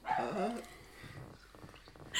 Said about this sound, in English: I really have to shut that dog up.